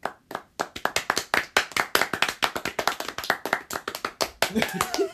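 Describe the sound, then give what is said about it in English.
Dense, rapid hand clapping from only three people applauding the iPhone 7, sharp overlapping claps in a fast steady burst that sounds fuller than a few people, with faint voices near the end. “But why does it sound like 50 people were clapping? There's only 3 of us in here.”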